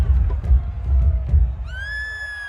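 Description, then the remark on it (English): A panicking crowd of refugees at a gate rumbles and clamors in chaotic bursts, then a guard's single shrill, sustained, terrified scream cuts in near the end and holds above the low din. “He then lets out a scream as if he's terrified, and he rushes into the panicking crowd.”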